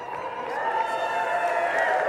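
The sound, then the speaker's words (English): An audience cheers and hollers steadily for about two seconds in response to mention of a 7-degree morning temperature, a dense, loud wash of many overlapping voices with no single speaker standing out. “You're not supposed to cheer about that.”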